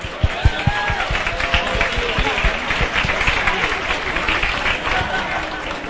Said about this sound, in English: Okay, and also, please, please, please, a big round of applause to the staff of House of Joy.